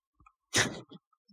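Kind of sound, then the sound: human body sound, cough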